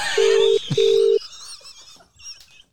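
A phone line rings out with two steady, evenly spaced ringback tones, each lasting about half a second, then falls quiet apart from faint background noise.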